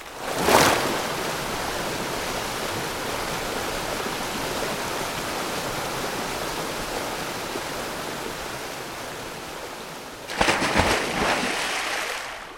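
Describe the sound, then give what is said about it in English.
A steady, loud rush of gushing water bursting into the walls roars continuously, like a torrent pouring through, with a brief splashy burst near the start and a sharper surge of spray toward the end. “It's very rude to burst into the walls in a gush of water like you did.”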